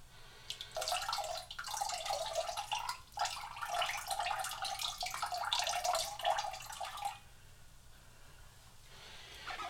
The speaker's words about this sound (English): And then we'll have our fresh lemon juice that we can put in to the mixture. Right. Go ahead and pour that in.